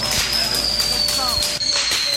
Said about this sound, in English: Police say a bunch of kids set a fireworks display on fire.